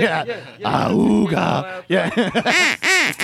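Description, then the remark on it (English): A duck sound effect is played: a loud, nasal, groaning call drawn out for about a second, then a quick string of short, rising-and-falling duck quacks, with no talking. “But if you happen to have a duck, too. Play sound effects.”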